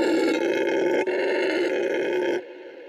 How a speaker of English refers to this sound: You know, howler monkey, a powerful sound. And whenever I'm hearing that, I knew I was doing something that I loved.